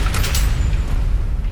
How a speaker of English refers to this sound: I need to listen to this again. Apparently this is door vault closing.